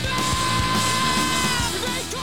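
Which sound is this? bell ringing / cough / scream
scream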